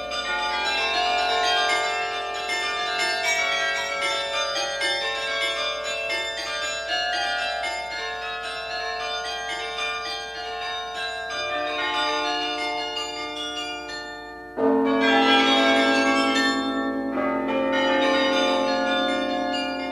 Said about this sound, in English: The Chimes of Delft.